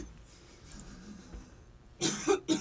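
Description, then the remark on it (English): A loud burst of coughing from a frog in the throat: two or three quick, harsh coughs clustered together after a quiet stretch, with no talking underneath. “I feel like you gotta have like some cough”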